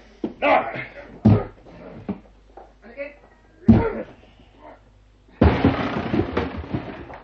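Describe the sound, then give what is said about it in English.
Heavy shoulder blows thud against a wooden door in two sharp, forceful impacts, then a loud splintering crash as it gives way, with grunts and voices around. “I shall need your shoulder to help break down the door.”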